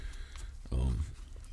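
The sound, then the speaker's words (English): A female dog gives a brief, low, rumbling growl lasting under half a second, against a steady background hum. “But she's growling at.”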